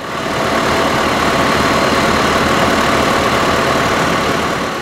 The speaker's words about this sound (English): From 9 at night until 7 in the morning, dump truck after dump truck is being loaded up with snow. It takes about 45 seconds to load up a dump truck.